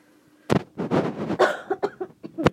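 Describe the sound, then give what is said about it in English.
A loud burst of coughing from a throat tickle after speaking: a sharp opening cough followed by a rough, rattling fit of several hacking coughs, ending with one last hard cough. “Oh, I'm so sorry. That's my coughing again.”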